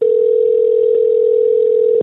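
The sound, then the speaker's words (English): A single steady telephone ringback tone on an outgoing call to a moving and storage company, one continuous two-second burst over a phone line, fairly loud and clear, then it cuts off. No one speaks. “But here is that phone call I made to the Magic Movers and Storage LLC.”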